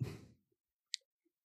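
Gold dice are rolled: a brief soft rattle fades out, then one sharp click as they settle, with a couple of faint taps after, quiet.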